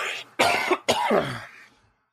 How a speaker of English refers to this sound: And I'm going to cough, so hold on a second.